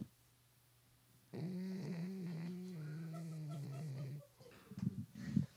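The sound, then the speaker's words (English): A dog snores: one long, droning, buzzy exhale lasting about three seconds, slowly sinking in pitch, followed by a few softer snuffling breaths. “Oh, she's snoring so hard.”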